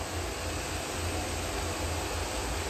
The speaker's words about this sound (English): And sorry for my washing machine and shit. My bad.